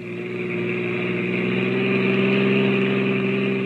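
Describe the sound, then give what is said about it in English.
A car engine hums steadily at a constant, even pitch, moderately loud, with a smooth sustained drone and no voices, as the car carrying three silent people reaches the outskirts of a town. “It's about an hour later now, and a car with three very silent people in it has just reached the outskirts of the town.”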